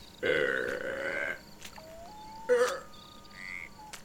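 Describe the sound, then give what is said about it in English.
A person voicing a frog character in a game imitates a frog with a long, throaty croak followed by a shorter second croak, separated by quieter squeaky vocal sounds, all fairly loud with no talking. “It's just frog noises.”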